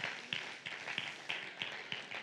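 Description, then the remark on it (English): A brief, thin patter of polite golf clapping in a church: a handful of light, scattered hand claps at a loose, uneven pace, soft and half-hearted, with no voices over them. “No, that don't deserve a golf clap.”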